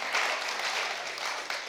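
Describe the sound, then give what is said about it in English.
A short burst of steady applause from a group celebrating a couple's 66th wedding anniversary, dense and crackling, holding at an even level with no voices standing out over it. “They've been married, it'll be 66 years on Tuesday. So that deserves applause, right?”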